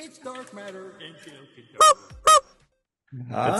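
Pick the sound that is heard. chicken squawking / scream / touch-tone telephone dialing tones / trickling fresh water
chicken squawking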